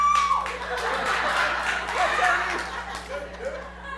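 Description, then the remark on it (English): An audience claps and cheers as an applause meter for a best-manicure contest, a dense, steady wash of applause mixed with scattered laughter and voices, moderately loud before tapering slightly. “I'm going to do a little applause meter from your guys' point of view, all right?”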